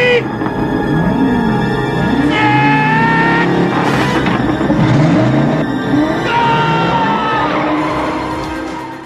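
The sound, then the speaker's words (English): A car engine revs hard several times in a row before a road race, its pitch sweeping up and falling back with each throttle blip, loud for the whole stretch with no talking. “He read the engine, and that's probably enough to say, yeah, okay, I'm all right with the rules.”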